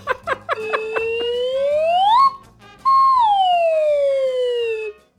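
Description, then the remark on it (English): A slide whistle opens with a few quick bouncing chirps, then glides slowly upward in one long rising tone, pauses briefly, and slides back down in a smooth falling tone. No one talks. “Okay, so I think that's a full slide whistle because, you know, motion is underrated.”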